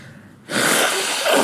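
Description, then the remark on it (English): A loud, forceful nose blow starts abruptly after a brief quiet moment and continues as one sustained, rough blast of air for about a second, with no talking. “You going to put my blowing my nose on my on the bonus?”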